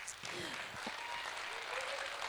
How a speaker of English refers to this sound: And yeah, well, you can clap for them.